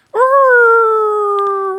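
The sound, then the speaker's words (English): A human voice imitates a wolf howl: one sustained, tonal cry that rises quickly then holds a steady pitch, slowly dropping and fading slightly over nearly two seconds, with no other sounds. “Woodrow Wolf gives a howl.”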